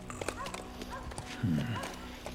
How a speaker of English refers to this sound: Ride them horses quiet, boys.